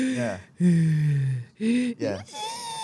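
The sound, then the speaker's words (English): A voice imitates a tiny newborn baby's breathing as it sleeps, with a run of short, squeaky, wheezing gasps in uneven bursts, fairly loud, with no other talk. “And how they kind of breathe like.”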